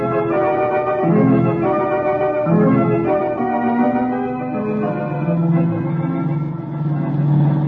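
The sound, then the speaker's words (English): A loud, steady car engine roar fills the whole stretch, its droning pitch surging up and dipping at moments as the motor is pushed hard while Margot drives in pursuit of Tasso and Harper's car. No voices can be heard. “Good driving, Margot. We're gaining on them.”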